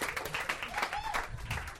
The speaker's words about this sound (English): Yeah, you should give me a round of applause for getting up here, because this is a pain, yes.